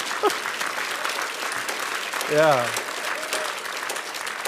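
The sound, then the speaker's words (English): An audience in church claps steadily throughout in a dense, continuous patter of applause, while a single voice calls out briefly partway through. “There's got to be a clap, there's got to be something.”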